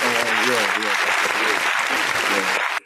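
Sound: applause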